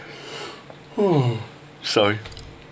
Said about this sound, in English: Never good to yawn right before you say one of the interesting things.